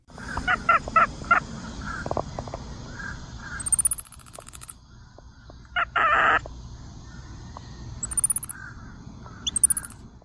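Capuchin monkey calls: a series of short, sharp chirps and harsh bursts mixed with thin, high rising trills that sound bird-like, repeated at irregular intervals, with no talking.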